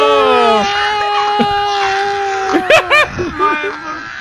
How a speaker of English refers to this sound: She's already screaming. Whoa. She's taking fucking flight.